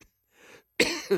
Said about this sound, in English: Sorry, I've got a little bit of a cough here.